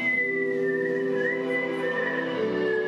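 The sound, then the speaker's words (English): A woman whistles a steady melody from memory, clear, with a bright sustained tone that shifts pitch smoothly over a low, even background accompaniment. “She can whistle just about anything she hears from memory.”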